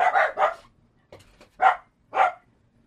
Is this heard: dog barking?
yes